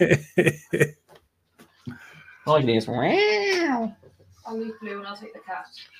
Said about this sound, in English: Can't hear the snoring dog. Can hear the cat kicking off, but can't hear the dog.